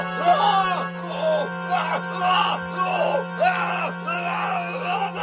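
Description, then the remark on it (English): The character Voronov screams and groans in anguish in a film scene with an atomic octopus in a lagoon, a series of strained, wavering vocal cries repeating every second or so, loud, with a steady low hum underneath. “Voronov screams as he's savagely untouched by the perpetually lifeless atomic octopus.”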